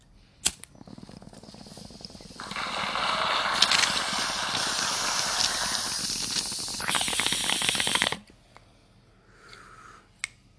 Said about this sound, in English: We're going to take this bong hit, and then we're going to jump into the next segment.